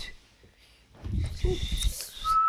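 A person blows breathy, airy gusts on a microphone, ending in a short, clear whistled note that holds steady for a moment. Quiet, with no other sounds around it.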